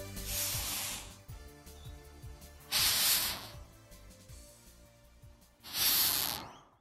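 Three loud, breathy hisses from a rhinoceros beetle come in separate bursts about two and a half seconds apart. Faint bird chirping and rustling continue underneath.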